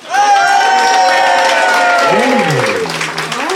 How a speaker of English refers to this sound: applaud now.